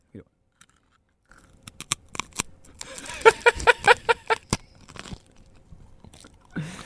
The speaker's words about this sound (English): these crackers are really good. These crackers are so crunchy and tasty.